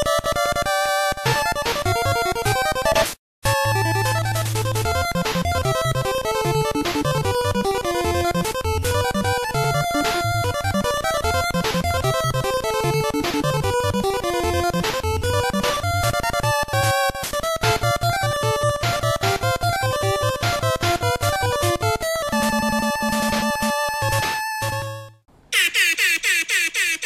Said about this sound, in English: Oh shit! I forgot about the air horn.